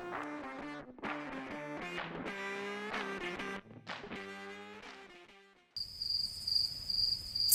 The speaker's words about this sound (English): Someday, there may be an ad here, but for now, just enjoy the soothing sound of these crickets.